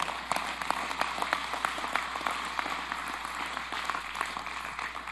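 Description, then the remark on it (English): A church audience claps together for the Lord in a dense, continuous burst of many hands, the sharp overlapping slaps sustained evenly for several seconds with no voices on top. “Go ahead and give the Lord a hand clap.”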